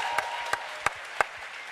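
An audience applauds the singers of a musical number in a steady wash of clapping, with a few sharper, louder claps standing out at a regular beat. No one speaks over it.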